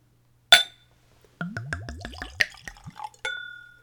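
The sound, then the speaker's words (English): A tulip-shaped Glencairn whiskey nosing glass clinks sharply, then dark rum glugs from a bottle in quick gurgling pulses as it's poured neat into the glass, ending with a bright ringing clink of glass. Fairly loud, no talking. “So let's go for a pour.”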